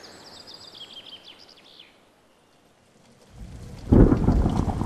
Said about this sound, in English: I can't remember a time when it rained for so long, can you? There's flooding in the town.